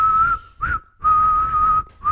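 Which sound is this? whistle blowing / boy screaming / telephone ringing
whistle blowing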